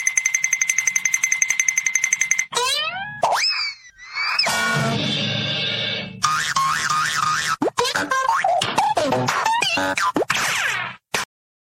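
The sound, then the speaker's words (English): A rapid-fire montage of cartoon sound effects: springy boings, sliding whistles, warbling tones and sharp pops tumbling one after another, loud, with no talking. “I apologize for the entire catalog of Hanna-Barbera sound effects.”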